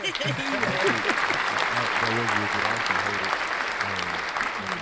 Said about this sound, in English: So I'm going to edit you in some claps right there.